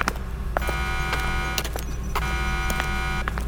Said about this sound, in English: Oh, goddammit, what? What'd I do? What's that beeping? What is that?